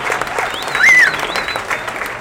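A crowd applauds steadily, a dense wash of clapping with a brief high whistle or cheer rising over it partway through.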